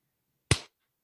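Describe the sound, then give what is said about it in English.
One sharp hand clap, made to sync separately recorded audio, rings out alone against silence, a crisp, bright smack that fades within a fraction of a second. “It's like, all right, clap sync, 1, 2, 3.”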